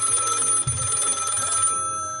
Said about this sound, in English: It's gonna be really fucking annoying when people do start listening to that shit, cause it makes my fucking phone ring.